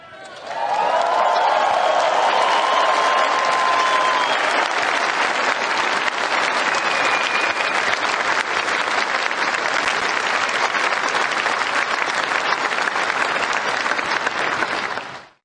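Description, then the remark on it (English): A large crowd stands and breaks into loud, sustained applause, a standing ovation after a speech about weapons for Ukraine, holding steady for about fifteen seconds, with a few cheers and whistles rising above the clapping near the start. “And these people are standing up and giving him an ovation over weapons that they're supposedly going to give him that he wouldn't even be able to use.”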